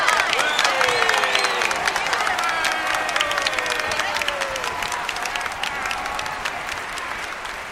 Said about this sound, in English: Round of applause if you can hear me. Louder! Louder!